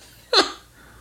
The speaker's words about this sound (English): Burp, by the way.